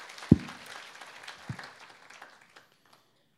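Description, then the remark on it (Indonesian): An audience applauds for God in a short burst of dense, crackling claps that taper off within a few seconds, with two heavier low thumps standing out near the start. “Saudara yang mau berikan tepuk tangan buat Tuhan. Berikan tepuk tangan buat Tuhan.”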